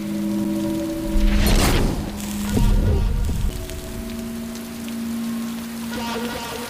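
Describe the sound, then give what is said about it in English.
Steady rain hisses throughout beneath a sustained musical drone, with two louder bursts of crashing, splintering noise breaking through near the start and middle. “Yeah, they say they have a fight in the rain.”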